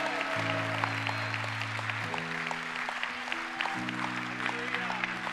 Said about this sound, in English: Church, would you just go nuts this morning and clap and thank God for people?